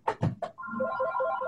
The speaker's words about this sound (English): oh, phone's ringing. Sorry about that. Let me try and get this ringer shut.